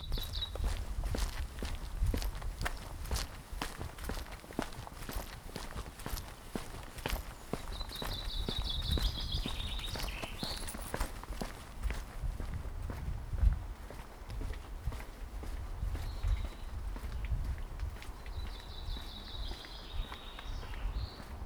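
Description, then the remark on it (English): Steady footsteps crunch along at a walking pace outdoors on a walk through a local neighbourhood, fairly loud, with a few bird chirps twittering in the background. “And so I've gone out for a little walk in my local neighbourhood, and I have been listening to the birds.”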